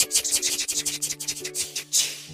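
A rattlesnake's rattle: a dry, rapid, hissing buzz that pulses unevenly and swells at the end, with a faint steady low hum underneath and no voices.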